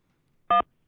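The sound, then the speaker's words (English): A single short telephone keypad tone from pressing 1 to accept a call, a steady two-pitched electronic beep lasting a fraction of a second, sounds alone against near silence. “To accept, press 1.”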